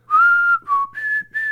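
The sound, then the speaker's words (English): A short whistled melody of about four clear, sustained notes, shifting up and down in pitch, whistled fairly loud as the intro of a song, with no talking over it. “Dun, dun, but it's got that, like, that whistled intro.”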